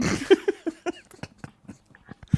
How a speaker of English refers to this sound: Heavy, okay. Wet crunch. That sounds good.